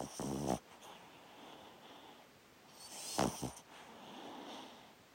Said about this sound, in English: That's the sound of my sweet dog, Wilco, and his little snore while he sleeps.